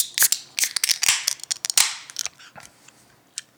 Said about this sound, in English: But I'm going to go grab this beer. I'm going to grab this glass and let's open her up.